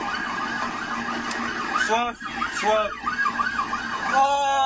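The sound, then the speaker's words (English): A police car siren wails loudly during a police chase of a getaway car through Dartford, England, its tone sweeping up and down in quick repeated cycles over rumbling vehicle noise, with muffled voices faintly underneath. “Robbers live stream police chase through Dartford before being stopped”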